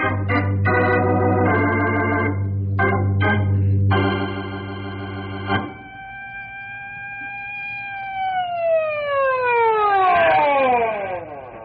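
An emergency vehicle siren sounds: a run of loud, choppy horn blasts over a low engine rumble, then a steady wail that slides smoothly down in pitch as it winds down.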